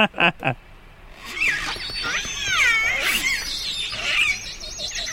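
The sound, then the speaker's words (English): An orca's family-specific biphonic call, one animal making a high and a low frequency at the same time: a high, warbling whistle-like tone and a lower wavering tone sounding together, rising and falling for several seconds after a couple of brief opening pulses. “That's one animal making the high and the low bit.”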